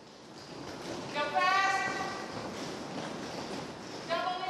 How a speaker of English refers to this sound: As we open the front doors of Dow's Roller Arena, we are greeted by the sounds of shouting and the smacking of skates on a hard floor. Inside, a group of women wearing protective gear are skating in a circle around the rink, practicing together